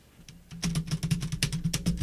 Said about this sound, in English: Can you actually hear the keyboard here? Try it again.